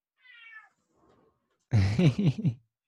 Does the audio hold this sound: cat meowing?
yes